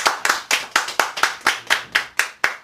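Clapping in a steady, even beat, about eleven sharp, crisp claps evenly spaced at roughly four per second, fairly loud and with no voices over them.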